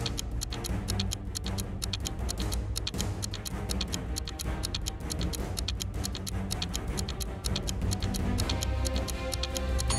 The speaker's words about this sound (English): Your 10 seconds are ticking.